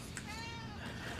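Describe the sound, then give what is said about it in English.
A cat lets out a single drawn-out meow, rising and then falling in pitch, over a steady low background hum. “Hey, kitty, shut up. You can gripe later, cat.”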